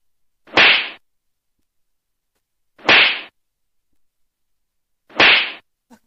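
Three brief, airy whooshes of a windy draft sweep past, each a sharp rush of hiss that quickly fades, spaced evenly about two seconds apart with silence between and no voices.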